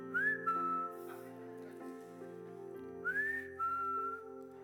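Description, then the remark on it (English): A person hiding during a game of hide-and-seek whistles so children can find him: two short phrases, each a quick upward slide that settles into a held note, separated by a pause, over a steady low tonal hum in the background. “You got to become very adept at following the whistle, right?”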